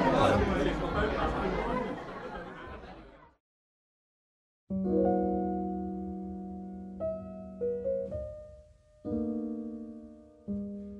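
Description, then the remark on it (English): Dense crowd chatter at a reception, many overlapping voices for about three seconds, then it cuts to silence before steady, sustained musical tones play in held chords. “As the hours wore on, the crowd began to thin out.”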